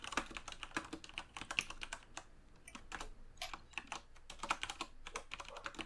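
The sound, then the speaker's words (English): Steady, rapid keyboard typing with dense clusters of crisp key clicks in irregular bursts and brief pauses, fairly quiet, with no voices. “I'm mesmerized by the typing right now.”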